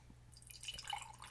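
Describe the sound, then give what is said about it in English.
Dark, velvety brown beer being poured into a glass, a soft gurgle of liquid with fizzy, bubbling splashes that build and continue steadily for about a second, with no one talking; the beer has a dark khaki head. “And the pour.”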